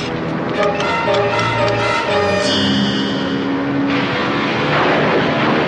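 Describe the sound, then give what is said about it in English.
A loud engine of a heavily loaded cargo airplane roars steadily for several seconds, its tone wavering and shifting unevenly as it sputters and the port engine quits, with no voices present. “Then the port engine quit, and with her in the cockpit was a frightened little boy.”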